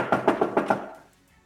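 Five quick, evenly spaced knocks rap on a wooden door, fairly loud, followed by a brief fading resonance and quiet.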